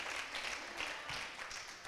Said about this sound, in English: Come on, give a hand clap to God if you believe it.